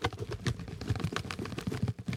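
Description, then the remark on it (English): Slips of paper bearing names are shaken inside a small plastic bucket in a studio to draw a winner, a busy, continuous rustling rattle of quick irregular clicks, fairly loud, with no talking over it. “what we're going to do is I have all the names in a plastic little bucket. I'm going to shake the bucket and you will hear it.”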